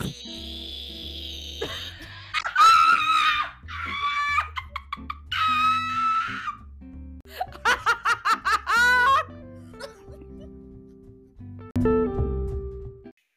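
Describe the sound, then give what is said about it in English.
A person imitates the buzzing of cicadas heard in summer in Texas with their voice, in several bursts of rapid, pulsing, high-pitched trills separated by short pauses, with what sounds like laughter mixed in. “Have you never heard of a cicada?”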